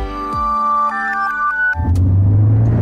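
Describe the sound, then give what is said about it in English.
Sustained tonal notes give way to a car driving on a road: a loud, steady low rumble of engine and tyre noise that takes over for the last second, with no talking. “Driving too close to the car in front gives you less time to react.”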